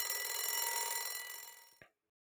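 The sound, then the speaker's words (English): A timer buzzer goes off with a steady, bright ringing tone that holds for about two seconds, slowly fading before it cuts off with a short click. No one speaks. “I was able to actually get through the whole thing without the buzzer going off, so that's a good thing.”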